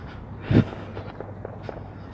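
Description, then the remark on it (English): A single muffled gunshot boom from a shooting range, dull and low, followed by a few faint, softer pops against a quiet background hum. “It's gunshots. They have a shooting range, and I could hear the gunshots.”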